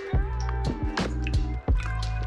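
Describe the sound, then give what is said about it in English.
Several wet gulps as someone drinks water, swallowing in a loose rhythm over a steady low background hum. “Sorry, I'm gonna drink some water, you guys.”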